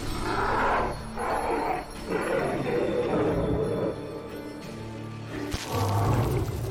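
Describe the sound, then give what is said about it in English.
A tiger in a game lets out a series of loud, rumbling roars in quick succession, deep and growling, with a low bassy thump near the end. “Every time you do something, because there's this tiger in it, it's just like...”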